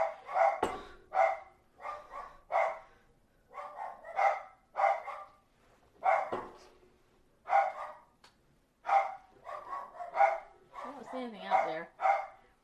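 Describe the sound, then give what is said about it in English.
Two dogs bark repeatedly at home in quick, rhythmic bursts, loud, with short gaps between the barks and a brief whine near the end. “But Tug is barking too.”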